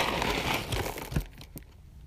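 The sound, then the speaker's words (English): Crinkling and rustling of a cat food packet being handled while preparing to feed a cat, a dense papery crackle for about a second, then a couple of sharp clicks and a quieter pause. No one speaks. “Sorry, I'm gonna feed my cat.”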